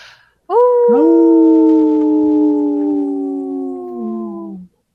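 Two wolves howl together in long, steady, overlapping tones that slowly sink in pitch. The calls are loud, with no other sounds, and they fade out after about four seconds.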